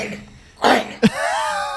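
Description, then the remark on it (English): A person with a recently caught cough gives a single harsh cough, followed quickly by a short throaty clearing sound and a faint voiced rasp trailing off afterward. “You know, before we start this episode, let me just say, I caught this really weird cough recently. So, just excuse me.”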